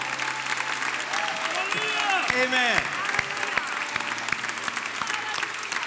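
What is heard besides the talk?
audience clapping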